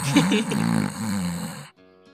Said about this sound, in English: I have some recorded snores, but I don't think it was caught due to the noise canceling.